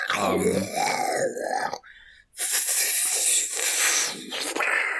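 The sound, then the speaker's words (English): Foley dragon growling effects: a deep, rumbling snarl that rises and falls, a brief pause, then a loud, breathy hissing roar that carries on to the end. No one is speaking. “I do speak dragon, if that is the sound of dragons talking.”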